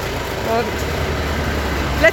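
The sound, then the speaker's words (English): Tractors and other traffic rumble up a street in the small town of Greig, a steady low engine drone with traffic noise filling the background and a brief high squeal near the end. “So we've just come into your outlet here as the tractors make their way up the street.”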